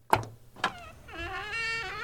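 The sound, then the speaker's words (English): Two sharp metallic clicks of a silver door handle turning, then a long, high-pitched creak with a rising and falling whine as the door swings open. No voices. “So she calmly put Mintz down, brushed dog hair from the front of her turtleneck, and commandeered the door's silver handle, twisting it subtly.”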